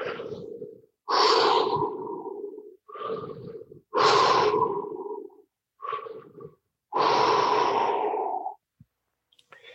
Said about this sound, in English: And now breathing in a way where there are no gaps, where you're always breathing in or breathing out, creating a wonderful circle of breath.